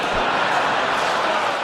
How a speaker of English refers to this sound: Mostly women in Congress raising their hands, clapping. Okay, don't sit yet.